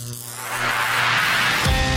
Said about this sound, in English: Stand by. The vacuum tubes are warming up.